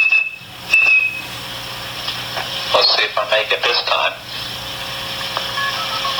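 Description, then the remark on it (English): In 1968, blind phone freak Joe Ingresia speaks briefly, then whistles a high, steady telephone tone followed by a quick run of short pitched whistled bursts imitating network signaling tones to place a free call through the telephone network, with line hiss beneath. “If you had perfect pitch like blind phone freak Joe Ingresia, you could whistle calls through the network.”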